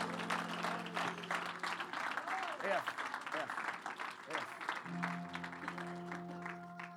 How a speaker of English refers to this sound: Come on, let's give Jesus a hand clap of praise.